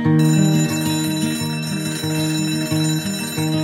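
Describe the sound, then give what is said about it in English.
A loud alarm bell rings continuously, its rapid metallic strikes blending into a steady, insistent jangle with no voices. “So coming awake to an alarm bell with a sudden start is not the best way to do your life.”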